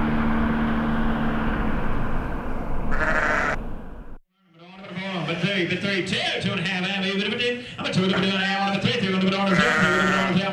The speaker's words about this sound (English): Marcus, why are we at a sheep auction?